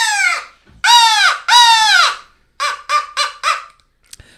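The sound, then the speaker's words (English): A hand-blown Rebel Yelp Outfitters crow call, a plastic molded insert fitted in an old barrel, sounds loud, giving three long, raspy, drawn-out caws followed by a quicker burst of four short caws, then a faint click. “The old crow call.”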